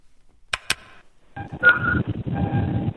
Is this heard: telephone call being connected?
yes